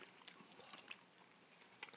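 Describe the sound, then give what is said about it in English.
Moist chewing of sour green apple candy right into the microphone, with sticky clicks and crunchy bites scattered irregularly over two seconds, quiet overall with no talking. “I'm chewing right into the mic and you're moving your face away, which is probably the best way to go.”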